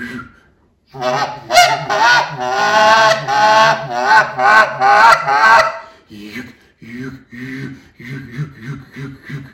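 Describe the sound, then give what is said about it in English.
A goose call blown in an advanced murmur, a fast, continuous run of throaty honks and clucks, loud, then breaking into shorter choppy murmuring notes toward the end. “Then when I get into the advanced murmur I was talking about earlier.”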